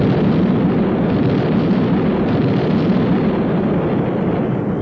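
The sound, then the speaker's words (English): A grenade explodes inside a house: a loud explosion with a heavy, roaring rumble that stays dense and steady for about five seconds instead of fading quickly, strongest in the low end. No voices. “A grenade.”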